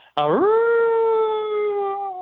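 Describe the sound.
A person imitates a hound dog's howl: a single loud, sustained note that swoops upward at the start and then holds steady for about two seconds.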